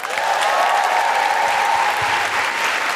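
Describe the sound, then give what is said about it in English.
A crowd at the South Bank Centre, at the close of the WOW Festival, claps steadily and loudly for the full length, a dense wash of many hands with no pauses and no voices rising above it. “Big round of applause for everyone here at South Bank Centre.”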